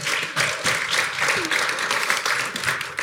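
A crowd applauds with dense, steady clapping that holds at an even loudness for about three seconds, with some faint murmuring voices mixed in.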